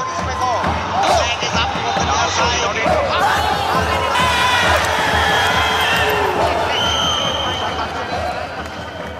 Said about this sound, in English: And these days, it has acquired the trappings of European fandom. We have ultras, we have music, we have drums, and we have some of the most intense crowds seen anywhere in Asia.